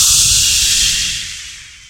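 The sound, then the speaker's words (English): A net trap springs on Luke, Han and the Rebel strike team as they set off to find Princess Leia. It makes a loud, airy whoosh that holds steady, then fades out over about two seconds. The rushing hiss is bright and breathy, with no voices. “But, as the heroes set off to find the princess, they are trapped in a net. Whoosh!”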